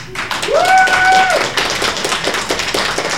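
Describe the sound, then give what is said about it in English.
A live audience applauds loudly with dense, steady clapping, and a sharp rising whistle cuts through near the start before the clapping thins out slightly toward the end. “Hands up noisily. Round of applause.”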